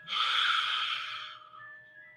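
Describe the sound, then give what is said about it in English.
A single deep breath drawn in, a steady airy rush that swells quickly and then slowly fades away, with no talking. “Let's take some deep breaths in and release. And we're breathing in.”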